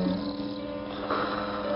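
A person snoring heavily, a single long, rasping snore with a low, buzzing rumble that holds steady at moderate loudness throughout, with no talking.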